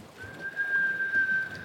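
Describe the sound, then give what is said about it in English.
A single shrill whistle blast holds one steady high pitch for over a second. It sounds clear over a faint background hiss, with no talking. “What's with the whistle?”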